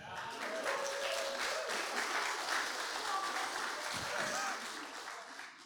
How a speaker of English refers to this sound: They all clap for you, worship team, but it's not about you.